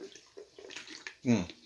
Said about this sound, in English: Drinking again. Only water this time.